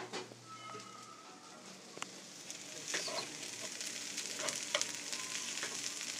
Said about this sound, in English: And now, the sound of some very delicious meal stuffs cooking on an open stove.